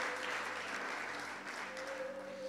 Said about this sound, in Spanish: ¿Cuánto le pueden dar un aplauso a Dios?